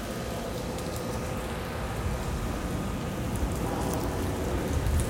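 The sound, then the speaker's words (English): Heavy rain pours steadily outdoors, a dense, continuous hiss of drops hitting surfaces, with no talking and no breaks in the downpour. “And it's starting to rain hard out here.”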